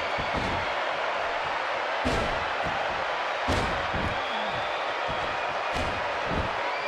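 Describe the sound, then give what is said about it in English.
Wrestler Garvin does his Garvin stomps repeatedly on opponent Sullivan in the ring, about eight heavy, booming thuds at an uneven pace, ringing out over a steady, loud crowd roar. “Doing the Garvin stomps all over.”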